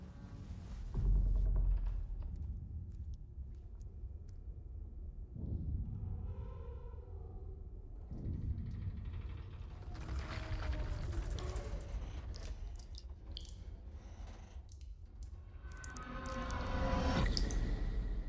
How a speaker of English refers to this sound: Underwater. Listen carefully. You are now 5,000 miles from land, and you're descending 7 miles to the bottom of the ocean.